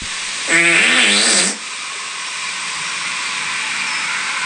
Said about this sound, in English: That was just fart.